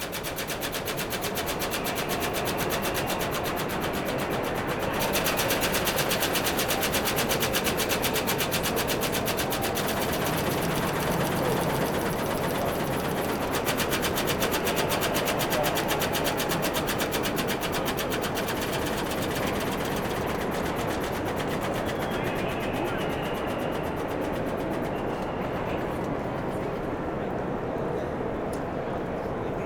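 Busy concourse ambience at 30th Street Station: a steady, dense wash of hundreds of blended conversations, with rapid clicking of passengers' heels and clattering of rolling luggage wheels running through it, holding an even loudness for the whole half minute.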